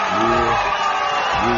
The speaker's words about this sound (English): Let's say, folks, let's give it a big round of applause first.